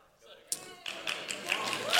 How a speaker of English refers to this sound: Now, there's a better clap. We got over the 20 mark that time.